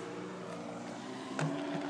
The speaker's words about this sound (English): Wow, a bevy of cars.